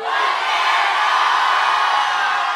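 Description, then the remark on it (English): A large audience at the live show Splitty in the City shouts the word "bananas" together in one loud, sustained unison yell, a dense roar of many voices that holds steady for a couple of seconds without any single speaker standing out. “but we end every episode with you yelling bananas as loud as you can.”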